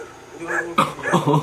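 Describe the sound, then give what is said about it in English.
Small dogs yip and bark in a quick, excited flurry, several sharp high-pitched yaps mixed with whiny, whimpering cries, lasting just over a second, as they catch up with a man running down a dark road at night. “Dogs turn out to be too small to do much of anything, but that doesn't stop them from giving him an awful fright.”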